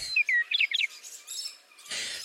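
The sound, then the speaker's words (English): Cardinals and blue jays chirping in a quick flurry of bright, high tweets, clear, fading into a soft airy hiss with no one speaking. “Goodbye, Cardinals. Goodbye, Blue Jays.”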